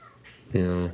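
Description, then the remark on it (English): A single drawn-out cat meow, fairly loud, lasting under half a second after a brief stretch of quiet background noise. “Hi, cat.”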